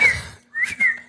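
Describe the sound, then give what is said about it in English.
A person whistles: a bright note that rises and falls, a short pause, then a second gliding note, with breathy noise around the tones and an abrupt burst at the end. “You want me to whistle when a deer's attacking?”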